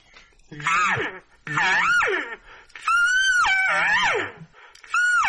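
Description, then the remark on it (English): An elk bugle call: four loud, wailing cries in a row, each sliding up, down and up in pitch with a reedy, buzzing edge, separated by short pauses. “But when you get that continual S sound in there, where it kind of goes up, down, and up like that, and they start buzzing it.”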